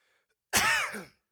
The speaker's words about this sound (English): I can't get rid of this cough all of a sudden.